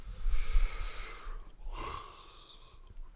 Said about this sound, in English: Sorry for yawning.